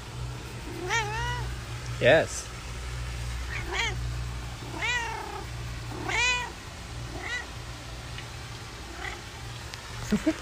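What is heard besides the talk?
domestic cat meowing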